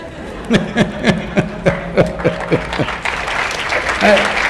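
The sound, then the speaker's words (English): An audience claps in a steady, unison rhythm of about nine sharp claps over a few seconds, clapping at the speaker's account of his failures, then the clapping stops and a murmur of crowd noise and a voice carries on. “You're clapping at my failures.”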